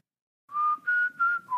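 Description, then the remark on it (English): A person whistles a short four-note tune, each note steady and clear with brief gaps between them, the last note dropping slightly lower. No one speaks. “Do you want to hear my whistle story?”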